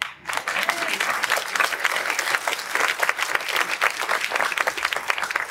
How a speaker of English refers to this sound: You are responsible for the cave that you are in. Now you can clap.